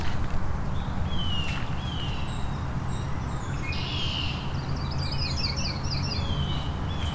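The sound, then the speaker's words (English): A red-winged blackbird sings, repeating whistled notes and a buzzy trill over a steady low rumble and what may be footsteps on the ground. “Red-winged blackbird.”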